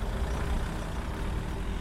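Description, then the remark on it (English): A vehicle engine idles in a car park, a steady, unbroken low rumble with a broad hiss on top, holding an even level throughout with no voices. “They all pulled up to the car park.”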